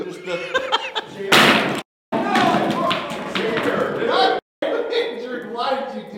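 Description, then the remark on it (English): A chair gives way under someone's weight with a loud cracking crash and thuds, followed by clattering, scuffling and bursts of laughter as several people react. “just destroyed his chair.”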